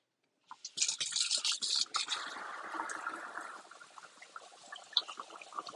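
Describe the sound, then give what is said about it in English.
Dishes being washed in a sink, the last items going into the dishwasher: a steady hiss of running water with scattered clinks and scrapes, a brighter burst early on, then softer splashing and one sharp clink near the end. No one speaks. “Almost done with the dishes. Last things going in right now.”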